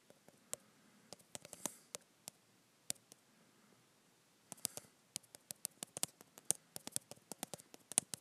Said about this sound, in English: You hear how fast I text?